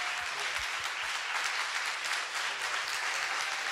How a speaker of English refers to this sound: Now, these people, they're all applauding you because they want you to save their life if there's ever a need to do so.